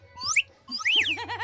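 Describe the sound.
A loud wolf whistle: a quick rising sweep, a short pause, then a swooping rise-and-fall tone that breaks into wavering, warbling pitches. No talking.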